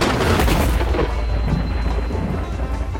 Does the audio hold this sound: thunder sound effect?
yes